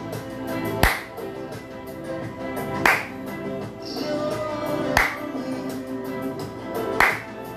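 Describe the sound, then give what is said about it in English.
Four sharp hand claps land at a slow, steady pace, about two seconds apart, over a continuous sustained musical backdrop, during a guided session of dancing in the spirit. “Move your hands around. Clap a little.”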